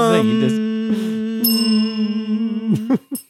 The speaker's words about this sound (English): If I had a bell, I'd ding it. I got a bell.